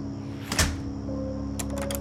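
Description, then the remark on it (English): A door closes with a single solid thunk, then about a second later a quick run of small metallic clicks as a deadbolt slides into place, over a low steady hum. “The door clicked shut. I heard the deadbolt slide into place.”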